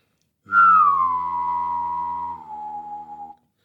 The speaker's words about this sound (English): What do you think is your most useless talent? Humming and whistling at the same time. Could you give us an example?